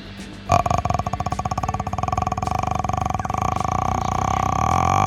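A long, deep guttural burp rattles in rapid pulses like a revving engine, starting abruptly and growing steadily louder for several seconds.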